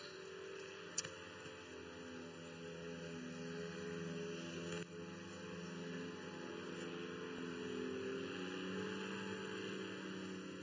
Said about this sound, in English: Either that's a massive wasp. Or it's a small plane. I hope the latter.